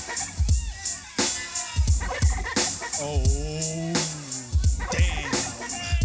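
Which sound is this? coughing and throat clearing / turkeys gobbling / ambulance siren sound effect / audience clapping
turkeys gobbling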